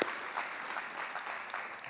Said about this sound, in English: Can I get a strong amen? Yeah, and a clap, and a clap.